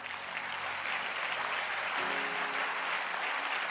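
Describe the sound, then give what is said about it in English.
Sustained applause from a crowd, a dense steady wash of many hands clapping at once, holding an even loudness throughout with no voices standing out. “can you clap your hands?”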